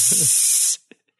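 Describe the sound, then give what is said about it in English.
A person hisses at a bad joke, a loud, sharp hiss that holds steady for under a second, then cuts off abruptly, leaving near silence with a couple of faint clicks. “Don't hiss me.”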